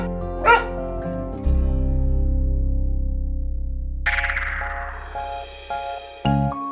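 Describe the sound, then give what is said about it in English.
A dog gives a short, sharp bark near the start, then a few softer yips and whimpers follow over a steady, humming musical backdrop with bright chiming tones. “So when a dog sniffs another dog's butt, that's how they say, "Hey, who are ya?"”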